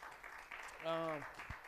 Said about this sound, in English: Three of our youth have given their life to Jesus Christ. You can give a hand clap for that. We're extremely elated.